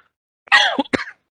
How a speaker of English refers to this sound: I'm sorry, I don't know why I keep coughing.